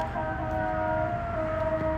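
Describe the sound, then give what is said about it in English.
A siren sounds outdoors with a steady, slowly shifting tone over a constant rumble of street noise, moderately loud, with no voices. “Like, those motorcycles are one thing, but now there's another siren.”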